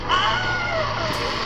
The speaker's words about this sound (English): So I'm actually going to play that little bit. And this is the original, quote-unquote, Wilhelm scream. Here it is.